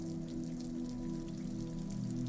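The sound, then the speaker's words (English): Steady rain patters against dozens of glass window panes set in metal frames that look out onto a courtyard, a soft continuous drizzle of tiny taps layered over a low, constant hum. No voices, just the even wash of rainfall throughout. “Rain falls on the dozens of glass panes set in metal frames that look out onto a courtyard.”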